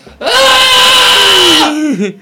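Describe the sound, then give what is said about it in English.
A person lets out a loud, sustained high-pitched shriek imitating a small animal, lasting about a second and a half before trailing off into a wavering squeak. “Yeah, squeaking at people, just maybe actually shrieking at people, because now it can shriek instead of just squeak.”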